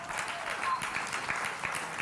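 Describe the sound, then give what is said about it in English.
An audience claps steadily in thanks to people who worked on a family camp, a dense wash of many overlapping hand claps at an even, sustained level with no pauses. “And also, you can keep clapping, also for”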